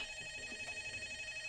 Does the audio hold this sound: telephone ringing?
yes